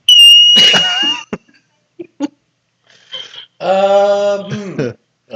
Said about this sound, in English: I don't know. It's a big beaver thing. Woodchuck or prairie dog or something.